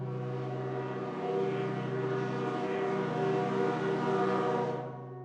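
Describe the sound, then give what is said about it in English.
A single sustained steam whistle wail, a rich harmonic tone holding steady for about five seconds, swelling slightly louder midway before cutting off, heard from a dark forest trail among tall pine trees, with no voices. “The long, lonesome wail of a steam whistle.”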